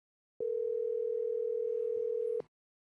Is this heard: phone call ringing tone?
yes